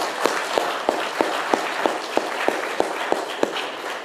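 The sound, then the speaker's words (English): A church audience applauding two centenarians in a dense, steady wash of clapping, with one pair of hands keeping an even beat that cuts through the crowd. No one speaks. “are centenarians who are here worshiping with us today, and I'm just going to pause to give you a round of applause.”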